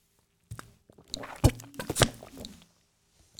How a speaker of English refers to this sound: So, but before I do that, you know, hey, let's take a little sip of that old Major Melon.